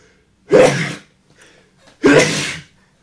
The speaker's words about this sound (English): You see, the Spirit is kind of unpredictable sometimes. That's right. And sends all kinds of inspirations upon us, some of which are an unexpected sneeze. Well, it's a sign that spring is here.